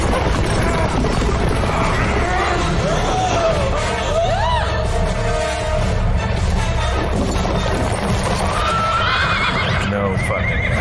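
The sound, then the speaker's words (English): Horses whinny loudly with rising, wavering cries while hooves clop and crash in a chaotic, dense stagecoach action scene from the film Van Helsing, a man's voice briefly cutting through the commotion. “fucking horses.”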